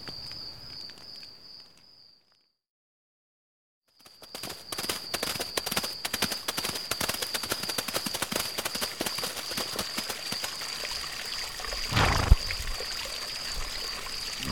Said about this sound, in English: I'm glad we found this stream. I'll say. The horses certainly are thirsty.